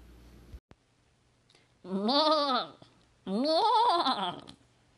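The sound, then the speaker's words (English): Two loud, quavering goat bleats in a row, each about a second long with a wavering, nasal tone, separated by a brief pause. “Let's get to Inspiration Goat, to the Inspiration Goat's chewing on this week.”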